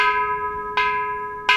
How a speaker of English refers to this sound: Gary Nakai strikes the Kansho with a wooden mallet.